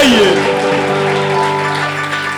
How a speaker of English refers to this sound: Yeah, if you're clapping, clap well.